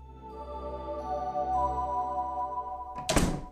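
A door swings and thuds shut with one solid knock near the end, following a few seconds of steady, humming tonal background; a home's door opened to let someone in, in April 2003.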